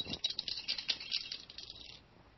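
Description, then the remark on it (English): Dice rattle and clatter in a quick flurry of bright, dense clicks for about two seconds, then settle into quiet. No one speaks. “Go ahead, roll.”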